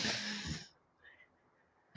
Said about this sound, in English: So everyone, we're all going to take a deep breath. I'm finding myself, I'm not breathing. So we're all going to take a deep breath right now together.